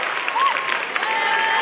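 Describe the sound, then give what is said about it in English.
A large audience claps steadily, a dense, continuous wash of applause at even loudness throughout, with faint vocal sounds and whoops mixed into the crowd noise. “Clap your hands for my son.”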